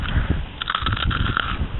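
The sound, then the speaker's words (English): Crunching of Cheetos being chewed: a quick series of crisp, crackly bursts in an irregular rhythm over a low rumble, with no talking. “I'm eating some Cheetos right now because I love them so much. They're crunchy, they're cheesy, they're Cheetos.”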